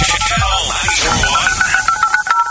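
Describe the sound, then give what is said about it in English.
The touchstone tone of Omaha hit music station Channel 94.1's Big Party Morning Show, signalling a Beat the Buzzer game: a bright electronic chime melody of steady, high tones, repeating in short pulses like a ringtone, rings out loudly over a swirling produced jingle backdrop with no talking. “That was the touchstone you heard.”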